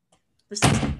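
A phone drops and hits a hard surface with a sudden loud thud, followed by a rough, clattering rumble that carries on to the end. A couple of faint soft sounds come before it.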